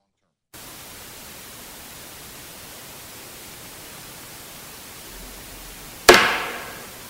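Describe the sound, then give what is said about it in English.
A steady hiss of static runs for several seconds in a recording made at 9:51, then a single sharp, loud knock rings out, like something banging on wood, and quickly fades back into the noise. “Again, almost on like it's being something's banging on wood”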